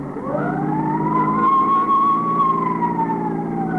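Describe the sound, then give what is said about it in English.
A police car siren wails in one slow rise and fall, loud, over a steady low rumble of engine and traffic, with no voices, as the car makes an emergency run to 618 East 75th Street. “I told Farrell to make the run.”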